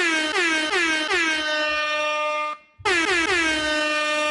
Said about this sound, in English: I think we need to hear the air horn again.